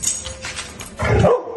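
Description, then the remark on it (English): A dog lets out a single short, gruff bark, loud and abrupt, after a moment of quiet rustling, as the female dog is offered tequila. No one speaks. “No matter how sing-songy your puppy voice gets, she's not going to succumb to your evil ways.”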